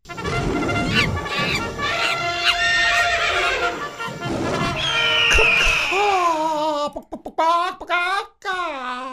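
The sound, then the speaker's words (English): A loud, drawn-out horse whinny runs for several seconds, then breaks into a series of short, choppy chicken-like clucks near the end, clear with no talking. “Turned into a chicken.”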